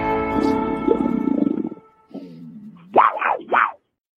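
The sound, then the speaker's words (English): A human voice imitates a panther's roar: a long, rumbling growl, a short pause, then two rising-and-falling snarling yowls, loud. “for that lovely ram, ram, ram roar.”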